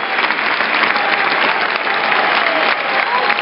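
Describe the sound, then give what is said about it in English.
Celtic players applauding Hibs fans after a football match: steady, dense applause from many hands, a continuous crackling wash of clapping at an even loudness throughout with a faint crowd murmur underneath. “The Celtic players now applaud us.”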